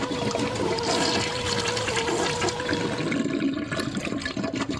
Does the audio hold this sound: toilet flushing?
yes